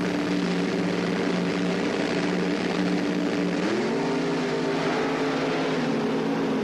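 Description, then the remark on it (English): Top Fuel dragster cars powered by aluminum racing engines roar loudly and continuously in a quarterfinal round, a dense harsh drone whose pitch steps upward about halfway through, with no voices. “All cars are being powered now in Top Fuel at this event by an aluminum racing engine.”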